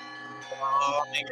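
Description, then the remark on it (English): Several bells ring together across a city, their sustained tones overlapping and humming on, fairly loud and steady with new strikes swelling in partway through. “You hear a single bell ring quite loudly. And then more bells.”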